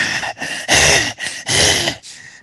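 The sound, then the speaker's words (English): A person imitates heavy breathing: five loud, rasping breaths in a steady in-and-out rhythm, some with a slight groaning voice mixed in, and no other talk. “Bent over an office chair, heavy breathing.”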